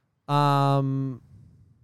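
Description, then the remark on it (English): A single loud cow moo lasting about a second, steady and droning with a rough, brassy start before it trails off into quiet background noise. “Not that we're here just to talk cows or anything like that,”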